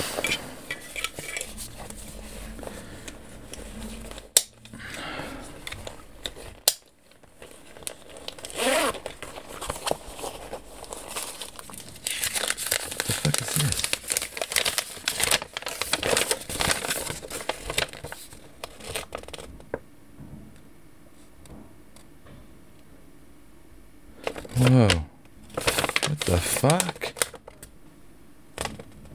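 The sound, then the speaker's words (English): Crackling rustles of a piece of paper being crumpled and handled as it is pulled from a pocket, in irregular bursts, easing off into near quiet before a final loud crinkle. No one speaks. “piece of paper inside the pocket.”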